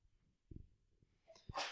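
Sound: sneeze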